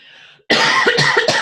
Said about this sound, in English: I got to clear my throat real quick.